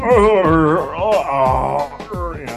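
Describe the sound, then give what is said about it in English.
A voice imitates the drawn-out groan of someone hauling themselves out of a car: a loud, wavering moan that sags and strains in pitch, trailing into a few shorter grunting breaths. “And she goes, "I heard the sound you made when you got out of your car."”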